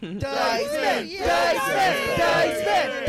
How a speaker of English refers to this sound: That's clearly an audience. It's clearly an entire audience.